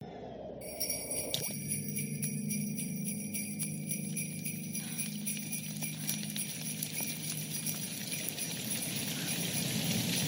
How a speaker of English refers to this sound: It's Christmas, damn it. I'm playing the bells. The bells are going to keep on coming in throughout December. That's it, man. That's my favorite drop right now.